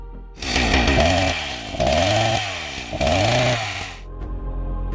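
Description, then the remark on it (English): A bird's convincing imitation of a chainsaw, loud, revving up and down in three surges over about four seconds before cutting off into quiet background noise. “Okay, so the other one that this bird can do is a chainsaw.”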